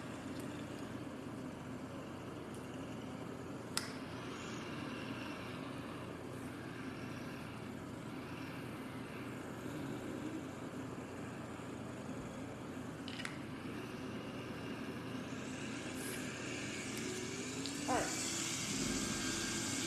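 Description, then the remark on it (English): A NASCAR Cup Series stock car engine in the Roblox game, during model testing at Pocono Raceway, drones steadily throughout, a continuous buzzing roar held at constant pitch, with a few brief clicks and a rising whine near the end. “Nascar Roblox Cup Series Model Testing at Pocono Raceway”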